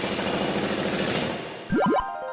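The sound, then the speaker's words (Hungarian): Rapid, rhythmic chipping and clattering of hammers striking stone at a stone-breaking class, followed by a few loud, ringing metallic blows, with no voices. “Békjót és kalapácsot biztosítunk. Kőtörő szakkör.”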